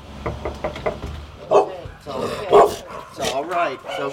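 A small dog, seemingly Daisy, the little one of a household's few dogs, barks in sharp, high-pitched yaps, three or four loud bursts spaced about a second apart, after a quick run of soft tapping sounds.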